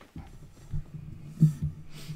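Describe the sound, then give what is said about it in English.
Two short, breathy sniffles, one after the other, over a low, faint thudding hum with no one talking. “You don't need to have my sniffles magnified.”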